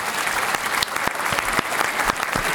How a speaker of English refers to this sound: Round of applause